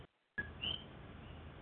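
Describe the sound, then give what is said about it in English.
A pet bird named Bird Brain lets out two brief, high chirps in the background over a steady low-level hiss, with no one talking. “Who's got the birds in the background?”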